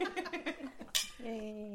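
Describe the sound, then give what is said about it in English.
Glasses of Rotkäppchen German sparkling wine clink together once in an end-of-year holiday toast, a bright sharp chime between bursts of laughter and chatter, followed by a drawn-out voiced tone. “So it's holiday time and we're continuing our Dead Lady Show tradition, getting together to toast the end of another year with our favourite German fizz, Rotkäppchen. Cheers.”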